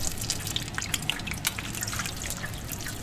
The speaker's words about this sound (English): Only when the bubbles sound just right does he whisk the freshly cooked tempura out of the oil, swiftly dabs away any excess oil, and voila!